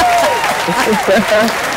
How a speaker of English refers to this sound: Let's get her applause, because that's always a good feeling thing.